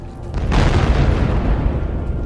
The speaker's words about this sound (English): We're in a cutscene now. An explosion in the distance. Everybody's looking at it like it's significant, but it's...